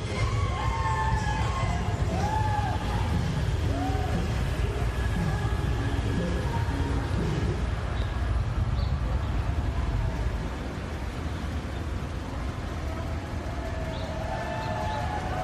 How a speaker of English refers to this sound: He gives us a view of one of the traffic jams caused by these people. Take a look at this.